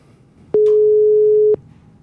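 A single loud telephone ringing tone, one steady one-second beep heard while a call is placed, with a faint hiss at its start and quiet background noise around it. No one speaks.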